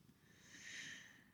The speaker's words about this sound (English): I forget where I was going with that. I just got enchanted with her purr. I wanted to share that with you.